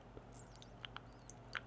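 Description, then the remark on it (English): A tea bag is dipped in and out of water as the tea steeps, making a few faint wet squelches and soft drips at irregular moments over a low background hum. “That's the tea bag going in and out of the water.”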